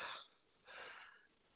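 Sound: yawn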